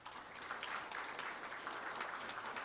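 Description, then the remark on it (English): An audience claps steadily in a dense, sustained wash of applause, many hands overlapping at an even loudness throughout with no voices standing out. “Let's give applause for that.”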